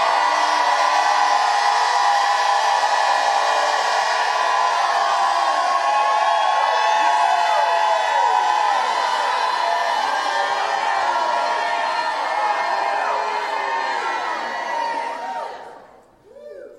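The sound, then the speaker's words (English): A large audience shouts and cheers continuously, a dense roar of many voices with whoops and high cries layered on top, holding steady at full volume before tapering off at the very end. “Come on, jump up and shout like you've never shouted in your life.”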